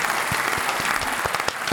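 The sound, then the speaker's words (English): A burst of applause from a live studio audience, dense overlapping claps filling the whole stretch at a steady, fairly loud level. “Where's my applause?”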